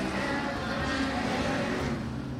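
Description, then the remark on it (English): A long, rumbling fart sound, blamed on nachos and beans eaten for dinner, a steady low buzzing sputter that holds at a fairly loud, even level for over two seconds without pause. “Excuse me, I had nachos for dinner. Yep, those yep. are the beans.”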